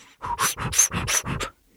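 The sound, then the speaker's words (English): A person imitates a dog panting, with about six quick, breathy huffs in a steady rhythm, fairly loud, stopping abruptly with no talking. “Can someone do like a dog noise?”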